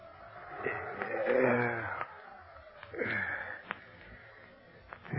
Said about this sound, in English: Oh, what's that? Oh, the wind, I guess. I mean, I hope.